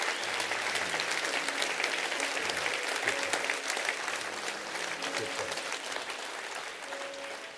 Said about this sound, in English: Stand to your feet all over the house. You've been an awesome, awesome audience today. Would you clap your hands for the glory of the Lord right now?